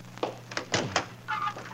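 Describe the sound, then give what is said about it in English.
A door is opened: a few quick clunks of the latch and handle, followed by a brief creaking squeal as it swings, over a low steady hum. “Now, hang on. Got to open this door.”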